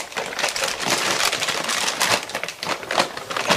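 Dry kibble being crushed while homemade dog food is prepared, a dense, continuous gritty crackling and crunching with small bursts throughout, steady and fairly loud, with no voices.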